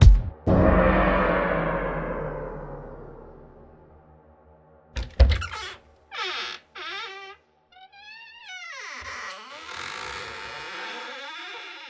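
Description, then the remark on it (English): A heavy thud rings out and fades slowly, then a sharp knock, followed by a drawn-out creaking as a door swings open, its pitch wavering and groaning in several strained stretches. “The door creaks open and you see this face”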